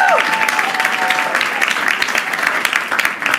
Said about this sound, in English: So today is Women's Month. Can I get claps for Women's Month?